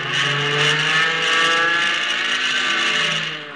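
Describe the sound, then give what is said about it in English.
A fighter plane's engine roars continuously at high revs as the plane loops to get behind another plane, loud, with a steady droning pitch that swells slightly and then eases off near the end. No voices. “Gonna see if I can loop and get behind him.”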